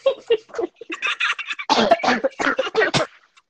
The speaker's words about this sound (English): Yes. You're making me cough. I'm sorry.